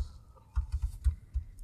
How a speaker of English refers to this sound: Yeah, put it on there. Keep typing.